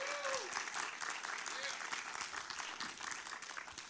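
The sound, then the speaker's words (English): An audience applauds steadily for new members who joined the church, dense overlapping clapping filling the whole span at an even loudness, with a few faint whistle-like tones rising briefly over the claps. “So let's applaud them all.”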